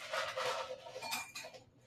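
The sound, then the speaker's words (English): Real ice cubes, not a sound effect, clatter and clink into a glass for a drink in a quick run of bright, rattling knocks, fairly loud and continuous for about two seconds, with no one talking. “Sorry, y'all, I get some more ice. So I can sip and stir that thing.”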